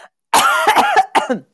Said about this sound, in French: La petite tousse.